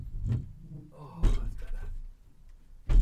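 A door or window being shut: a solid thunk, some rattling and handling, then a second heavy bang at the end.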